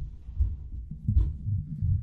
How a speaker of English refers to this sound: People may hear jumping and bouncing in the audio. That would be my dog going nuts upstairs. And he's done.